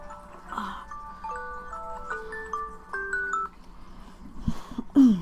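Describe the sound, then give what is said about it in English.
A phone alarm plays a bright electronic melody of stepped, beeping tones for a few seconds over a low background hum, ending with a brief rustle. “My phone alarm started going off, and my baby's in my lap.”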